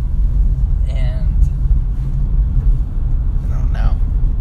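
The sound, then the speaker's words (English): A steady, loud low rumble of a car driving over the road past a swamp, constant throughout, with two brief, faint chirpy tones rising above it. “Like, I'm driving by this, like, swamp.”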